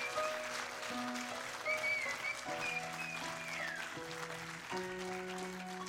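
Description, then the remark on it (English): A church audience in the sanctuary applauds those who gave their lives to Jesus that day, clapping steadily for several seconds while sustained keyboard or organ chords play underneath, shifting a few times, with a few high whistles rising above the clapping. “So, church, let's applaud those who give their life to Jesus in the sanctuary here today.”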